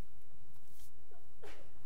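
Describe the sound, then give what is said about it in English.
A single sneeze: a breathy intake followed by a sharp, noisy burst with a brief voiced edge, fairly faint over a low background rumble. “Bless you.”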